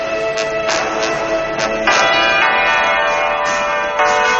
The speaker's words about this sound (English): As church bells celebrated the call to arms, a handful of rebels marched out along the dusty roads, they became 100, then 1,000, and 10,000.